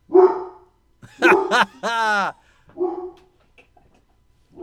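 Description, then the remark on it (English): A dog barks in four short bursts over a few seconds, one stretched into a drawn-out, whining howl, with brief quiet gaps between them, as it goes to its room after being told to lie down. “That dog's not listening to a fucking word you say.”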